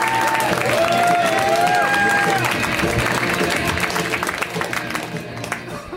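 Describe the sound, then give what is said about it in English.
A show audience claps steadily to welcome a comedian on his first time on the show, with scattered whoops and whistles rising over the dense applause before it gradually thins and fades toward the end. “Huge round of applause that you can start right now.”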